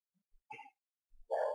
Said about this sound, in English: Dog is going crazy.